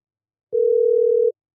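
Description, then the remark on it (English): A single steady electronic telephone ringing tone of an outgoing phone call sounds once for under a second, clear, with silence before and after and no voices. “Let's see if he answers.”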